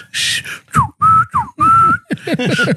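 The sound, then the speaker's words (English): A loud human whistle in a quick series of short bursts, some notes sliding downward and others held steady or rising, like a street calling signal. “Hey, you know you're in a bad neighborhood when you hear that whistle.”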